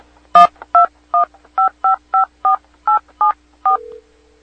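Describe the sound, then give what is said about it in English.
A rapid run of about ten touch-tone telephone dialing beeps as a phone call is placed, evenly spaced and clear, preceded by a brief click and ending in a short steady tone, with a faint hum underneath and no talking. “So we get him on the phone, and let's see if we can do that. Let's call up Trent.”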